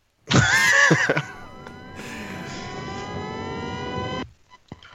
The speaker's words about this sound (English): Somebody had an engine revving up in the background there, but I thought that was you. No, it wasn't me. I don't know where that was coming from.